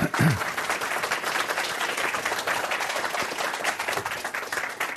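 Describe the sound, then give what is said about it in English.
A crowd applauds steadily for about five seconds, welcoming two speakers at an event about the future of personalized medicine, a dense, even wash of many hands clapping with a brief voice heard at the very start. “Okay, let's give them a hearty round of applause.”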